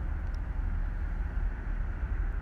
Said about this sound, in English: As where I'm located outside, we will hear the noises of some cars going by.